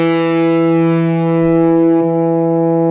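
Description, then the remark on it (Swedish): A sustained, heavily distorted electric guitar chord, struck hard, rings out through an effects pedal, loud and steady with a thick, buzzing harmonic tone and no talking. “Och nu ska jag då, om jag gör det jämfört med hårt, liksom.”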